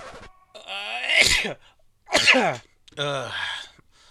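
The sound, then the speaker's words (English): A few loud sneezes caused by accumulating dust in quick succession, each with a voiced, drawn-in buildup before a sharp explosive burst, separated by short pauses. “Since I don't have any circulating air, the dust is accumulating and I'm getting those sniffles.”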